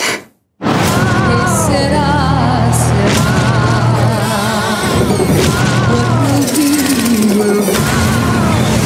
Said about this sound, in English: Oh, chainsaw!